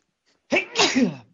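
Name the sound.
sneeze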